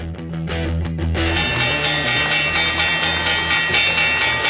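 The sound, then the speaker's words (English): A stock exchange opening bell rings loudly and continuously, a bright, buzzing metallic clang that holds steady for several seconds after a brief burst of noise at the start. “Theo, since we're talking about stocks being up, stocks being down, NFL through week 8, and just for posterity purposes, can we Ball Street bell this thing?”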